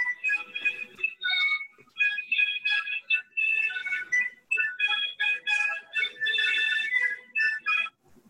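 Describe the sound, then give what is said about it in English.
A song plays as ringback over a phone call to Nick Young, a thin, tinny melody with bright high notes that runs steadily for about eight seconds with brief pauses and no one talking. “What is this song he got on his phone?”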